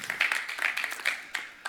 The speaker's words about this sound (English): What a line. Come on, let's applaud Andy Crouch for that.